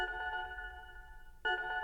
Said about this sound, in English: All right, here's Nissan Kanto. So it starts, like I said, with the reverse sound, and then you'll hear the engine sound.